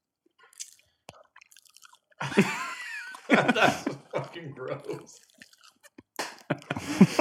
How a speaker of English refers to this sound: You can really get at the subtleties of the chew with a condenser mic. Mm-hmm. This, you folks at home, know what the texture is like. Chewy, a little soft.